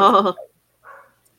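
A dog barks once loudly, then gives a shorter, fainter bark after a brief pause, after hearing a very loud truck arriving home. No vehicle sound is audible.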